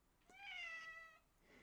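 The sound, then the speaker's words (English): A female cat gives a single drawn-out meow, fairly loud, with a rising then slowly falling pitch, heard on its own against a quiet background. “So does your cat. I know, she does. She's involved.”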